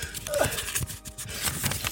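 paper being handled

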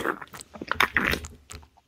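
gulping water

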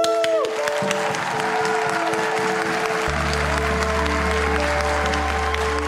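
people clapping

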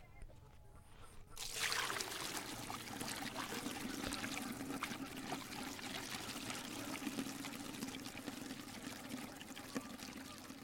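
water poured

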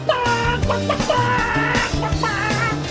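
chicken clucking sound effect

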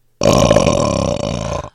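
burp

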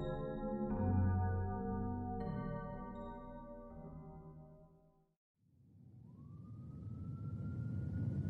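ambulance siren

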